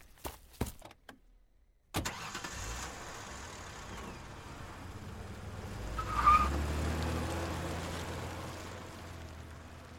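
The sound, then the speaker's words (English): A few sharp clicks and thumps, then a car engine cranks and catches, idles with a low rumble, and revs up as the vehicle pulls away, the engine note climbing steadily, as someone gets in their car and flees a house. “I just got in my car and fled.”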